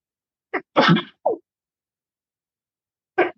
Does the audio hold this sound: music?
no